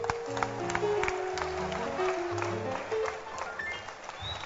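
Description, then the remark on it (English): An audience claps their hands for a woman in a steady, dense patter that continues throughout, mixed with sustained low musical tones and some indistinct voices in the background. “Clap your hands”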